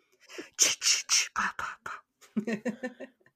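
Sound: imitated creepy heavy breathing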